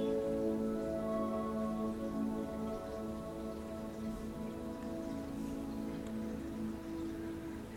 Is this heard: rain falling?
yes